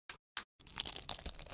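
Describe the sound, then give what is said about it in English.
Two quick, crisp crunches from an unsalted saltine cracker, then a brief pause and a burst of steady, crackly chewing into the microphone, with no talking. “It's a saltine without salt on it”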